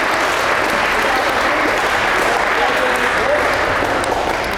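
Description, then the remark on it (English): A crowd claps steadily in a dense, continuous round of applause for the parents at a team event. The applause stays loud and even for the whole stretch, with many hands blending into a bright wash of sound. “You guys give your parents a round of applause.”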